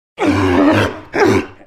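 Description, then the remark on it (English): A sea lion barks twice, loud: a long, hoarse, throaty bark followed by a shorter one after a brief pause, with no other sounds around them. “So, what's that sound? A sea lion!”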